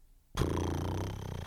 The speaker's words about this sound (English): It's not supposed to be a cat purring. No, that's even more cat purring. I don't know what it is. It's something.